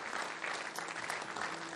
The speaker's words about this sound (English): Come on, let's clap for Jesus. Hallelujah.